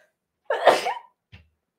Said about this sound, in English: Hold on, I gotta sneeze.